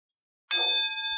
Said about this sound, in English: So I'm over here and I gong on it.